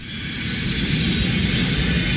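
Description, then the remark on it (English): A steady, loud airplane cabin rumble fills the scene, a constant low engine drone under broad airy hiss with no breaks and no voices. “I am so glad we ate before we got on the plane.”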